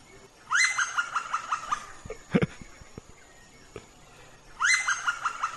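A Kaempfer's woodpecker, a fairly big bird from Brazil, gives a loud, laughing series of rapid calls that rings out twice, several seconds apart. Each is a quick run of bright notes that tapers off, with a brief knock between.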